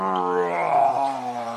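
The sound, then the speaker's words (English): A voice imitates a lion's growl as Mighty Lion goes into a cave: one sustained, rumbling snarl lasting over a second, steady and fairly loud, with a slight rising swell in the middle. No other sounds accompany it. “Mighty Lion growled and grumbled as he went into the cave.”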